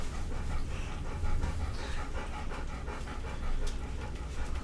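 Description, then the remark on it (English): A dog pants rapidly and excitedly, quick rhythmic breaths with a faint whimper, continuing steadily with no one speaking; the dog is looking up at a bed. “Yeah, I don't know what that dog's so excited about, like looking up on the bed.”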